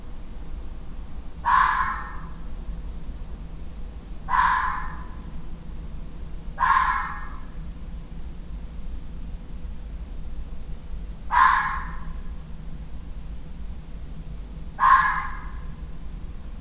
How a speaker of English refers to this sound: the Vixen Scream